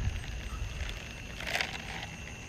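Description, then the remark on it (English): Someone chewing ice: soft, gritty crackling throughout, with one louder crunchy burst about midway. No one speaks, and the chewing stays fairly quiet. “I was chewing on some ice.”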